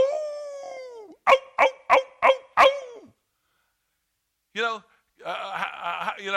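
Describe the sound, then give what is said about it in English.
A person imitates a wolf howl with a drawn-out, slowly falling voiced tone, then five quick rhythmic yips. After a short silence come more loud vocal sounds. “they all come together and they start howling”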